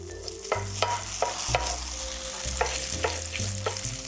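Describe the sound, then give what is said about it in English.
Gluten-free pancake batter, shaped into a round pancake with a spoon, sizzles in a generous amount of frying oil with a steady crackling hiss, punctuated by sharp clicks and scrapes every half second or so, over a low tonal hum in the background. “I love the sound of the batter sort of sizzling in this oil.”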